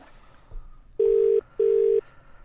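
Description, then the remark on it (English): A telephone call ringing out, heard as two loud, steady electronic tone bursts in a quick double-ring pattern over faint background noise, with no voices and no one picking up. “So this should be dialing. Is it ringing, mate? It's ringing.”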